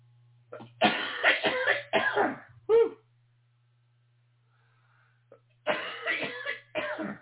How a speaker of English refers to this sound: That wasn't good. That was going to be a super loud cough, I could tell, so I just had to shut down the audio on that one. Whew, that was not good.